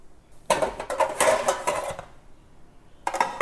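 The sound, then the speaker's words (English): Metallic clattering and scraping as a metal baking tin is handled and got ready with baking paper, in two bursts with a short pause between, crinkly rustling mixed in, no voices. “And let me get my baking tin ready with baking paper as well.”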